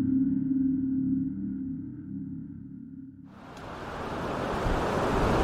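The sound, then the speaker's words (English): During a storm, a low, steady rumbling roar gives way about three seconds in to a loud, hissing rush of waves breaking on the shore, the washing surf continuing to the end. No one speaks. “The shore is not usually audible from this far in. Stay away from the water.”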